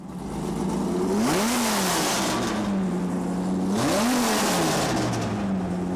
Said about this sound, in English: We dropped a V10 engine, taking the engine of the Viper and dropping the V10 engine into a Challenger for pure drag racing. Just for this is not for the street, just for the drag street.